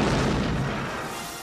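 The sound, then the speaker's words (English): A single heavy cannon, touched off by a gunner with a linstock, blasts loudly, its deep rumble rolling and slowly fading over a second or so, with no voices. “And the nimble gunner, with linstock now, the devilish cannon touches, and down goes all before them!”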